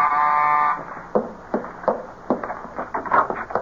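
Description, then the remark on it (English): A loud, steady electric door buzzer sounds once for under a second, a harsh droning tone, followed by a series of soft irregular knocks and shuffling thumps. “Oh, someone at the door. Must be my grocery order.”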